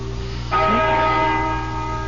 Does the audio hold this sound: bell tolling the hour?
yes